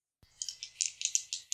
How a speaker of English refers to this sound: I hear some sick rolls. There's a lot of dice.